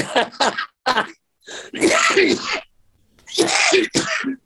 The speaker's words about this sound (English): Any sudden laugh, a genuine sudden laugh makes me cough, which is not good.